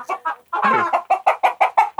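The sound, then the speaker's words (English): A rooster clucks loudly instead of crowing, as if it had laid an egg, in a rapid, insistent series of short, squawky calls with one longer drawn-out cackle near the start, no talking. “Now the rooster is clucking like he laid an egg.”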